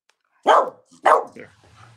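Two loud, sharp barks from a female pet dog in quick succession, lifting her front two paws as she barks, with a brief quiet gap between them and a faint low rumble trailing after.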